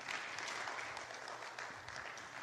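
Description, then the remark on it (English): An audience breaks into sustained hand clapping in praise of the people who set things up, a dense, steady wash of many overlapping claps with no clear rhythm, holding at an even loudness throughout. “So give them a hand clap of praise.”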